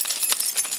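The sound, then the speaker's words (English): Bright metallic jingling of keys being shaken, a quick run of overlapping clinks with no pause between them, steady and moderately loud with no voices. “Man, sometimes I walk around and just shake my keys because I can't.”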